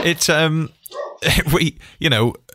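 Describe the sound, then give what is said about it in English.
A dog barks loudly, three drawn-out, tonal barks with short pauses between them, the middle one broken into quick yips. “Hello, dog.”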